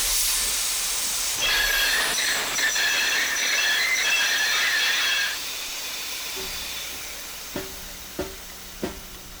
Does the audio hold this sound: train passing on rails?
yes